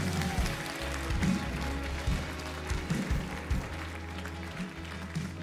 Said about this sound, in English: Somebody give the Lord a clap offering of praise.